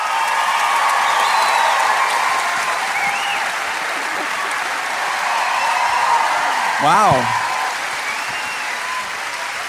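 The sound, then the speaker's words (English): A large theatre audience at a live show at the Sydney Edmore Theatre in Sydney claps steadily throughout, a dense, sustained roar of applause that stays loud the whole time. Late on, a man briefly exclaims over the clapping. “What a crowd.”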